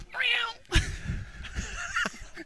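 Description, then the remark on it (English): A person imitates a cat's meow with a single drawn-out, wavering mew, followed by scuffling noises and some voice-like sounds. “No, you got to do the cat.”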